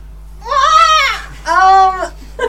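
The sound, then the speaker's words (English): A person's voice imitates a bird call with two drawn-out, wavering cries that sound almost like a bleat, followed by a brief faint chirp at the end. The imitation is loud and heard alone. “That was a very good bird noise there.”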